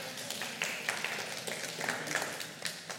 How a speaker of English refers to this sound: You can give a little golf clap. That's all right. You can clap it up for God.